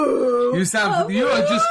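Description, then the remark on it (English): A person vocalizes a sustained, wavering low horn-like tone, mimicking the deep foghorn blast of a Jaeger robot, loud, lasting under two seconds with a slight pitch rise. “Jaegers don't roar. Yeah, they don't. God, get with it. They got foghorns.”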